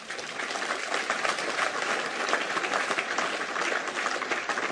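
An audience breaks into sustained applause for God and Jesus Christ, a dense, steady wash of clapping hands that holds at an even, fairly loud level for the whole stretch, with no voices standing out.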